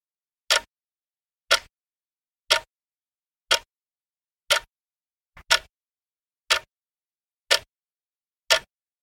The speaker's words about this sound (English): The seconds of life are ticking by as we begin a new year, aren't they? I have a beautiful mantle clock, laminated in black and gold, purchased by my granddad in 1918, the year my dad was born.